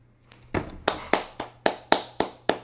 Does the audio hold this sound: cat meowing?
no